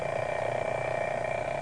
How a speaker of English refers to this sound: All right, sound effects man, ring the alarm clock.